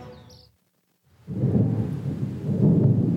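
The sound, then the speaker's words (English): A brief quiet gives way to a swelling, rumbling roar of thunder with a dense wash of rain, loud and sustained, building steadily over the last couple of seconds. “As the first sprinkles of rain splashed onto the ground, the people knew they were doomed.”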